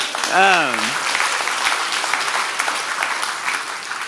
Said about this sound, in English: Whoa, there was like a gasp. Yeah, it's that exciting. You can applaud that.